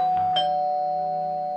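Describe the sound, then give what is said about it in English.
A doorbell chime rings once with two quick tones, then its bright, steady note rings on and slowly fades. It sounds clear, with no voices. “Did the doorbell just ring?”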